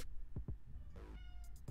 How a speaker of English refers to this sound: What the fuck's the matter with you, cat?